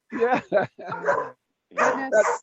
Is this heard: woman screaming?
no